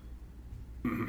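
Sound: throat clearing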